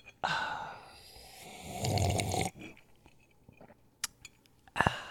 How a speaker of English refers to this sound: You've been practicing it with your coffee drinking. I knew what you were up to. Yeah, it just it's got me sparking. Well, no, he tapped it and then he took a long sip right into the mic